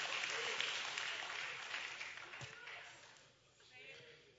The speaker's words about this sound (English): Thank you for those scattered claps across the Metroplex.